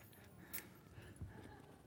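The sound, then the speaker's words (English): A brief metallic jingle of keys with a couple of sharp clinks, fairly quiet, followed by a soft low thud as they are put down. “let me get rid of my keys.”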